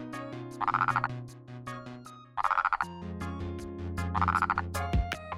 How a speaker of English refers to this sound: During mating season, male frogs seek out temporary lagoons and flooded fields and call to females.